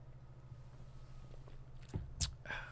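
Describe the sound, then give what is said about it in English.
A quiet sip of ice-cold beer from the fridge: a soft mouth sound, a brief wet slurp, then a faint exhale or swallow, with low background hum throughout and no talking. “Excuse me, let me take a sip of this beer while it's still cold.”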